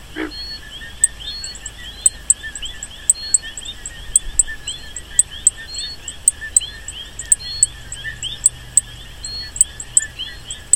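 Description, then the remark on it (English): A dense night chorus of plains coqui frogs recorded at Sabana Seca, Puerto Rico, on July 7, 2013: sharp, high chirping notes repeat steadily over a constant shrill, insect-like drone, with no voices present. “In Sabana Seca, we established the permanent station there because there was a new species of frog, a coqui. It's called the plains coqui.”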